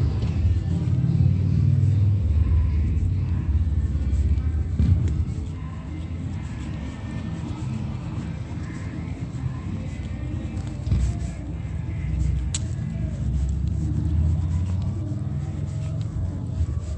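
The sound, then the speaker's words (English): A deep, steady motorcycle engine rumble as a motorcycle passes on Palm around 7 p.m., loud, filling the whole stretch with a slight dip partway through and no voices over it. “A minion on a motorcycle.”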